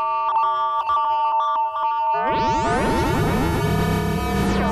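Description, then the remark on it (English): A synthesizer sine-wave oscillator holds a steady electronic tone, then abruptly erupts into a loud, gritty, heavily distorted roar packed with buzzing overtones that sustains to the end, with no talking. “So let's try the sine wave.”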